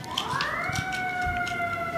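An ambulance siren wails as it passes, its pitch sweeping upward and then holding a steady high tone over rumbling street noise, with no one speaking.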